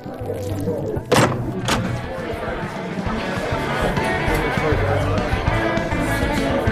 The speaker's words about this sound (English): If we open this shipping container door, welcome to the trusty trowel